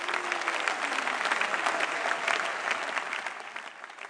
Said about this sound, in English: Let's celebrate Jesus for this powerful testimony. Put your hands together and celebrate the Lord. Are we clapping for Jesus?